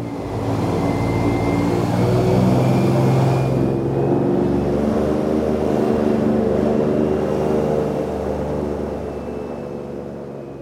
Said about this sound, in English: The fanboat engine revs up and we glide out across the sawgrass.